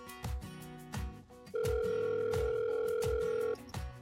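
A single long telephone ring tone, steady and clear for about two seconds, sounds over a rhythmic music bed with punchy beats before and after it, as a phone call is placed to the head of the nonprofit ministry A Door to Hope. No one speaks.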